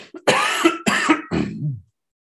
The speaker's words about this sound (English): Wow. Hold on, I'm going to cough. I'm sorry.